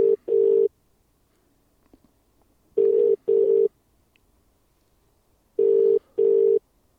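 A telephone ringing tone sounds in three double-pulse bursts, evenly spaced, clear and steady with silence between rings and no one picking up.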